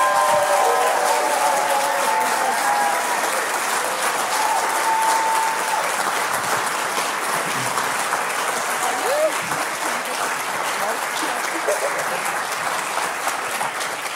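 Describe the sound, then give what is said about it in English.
A church audience, standing, applauds steadily and loudly for about fourteen seconds for a woman of the church, dense clapping with scattered cheers and voices rising through it, the level holding even throughout. “So can we all stand to our feet and give her the biggest round of applause ever?”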